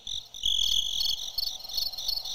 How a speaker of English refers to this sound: Crickets. That's my wife got me that for Christmas, by the way.